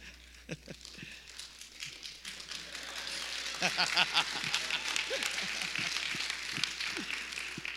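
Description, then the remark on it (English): A room full of people claps for a woman, starting as scattered hand claps and swelling into steady, dense applause that keeps going at a moderate level, with faint voices mixed underneath. “Yeah, if you want to clap for her, then go for it.”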